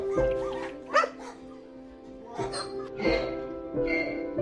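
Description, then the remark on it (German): A dog at an animal shelter barks and yips excitedly in several short bursts on hearing its owner's voice, with high whimpering whines between them, loud, over a steady background hum. “Als der Hund endlich die Stimme seines geliebten Besitzers hörte, gab es keine Zweifel mehr.”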